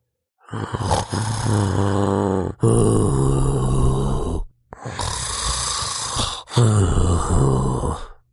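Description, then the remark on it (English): Loud, rasping snores of the big bad wolf from Little Red Riding Hood, asleep in bed in Grandmother's house: two long rumbling breaths in and out with a short pause between them, heavy and guttural. “A hunter heard the snores and thought it was a bit strange.”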